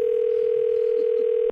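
A steady telephone dial tone at the start of a prank phone call hums at a single mid pitch. It is loud and unbroken for about a second and a half, with no voices over it.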